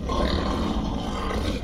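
A deep, sustained beastly roar rumbles loud, a wolf-like Night Wolf in a jungle bellowing steadily for nearly two seconds with a rough, growling texture and no voices.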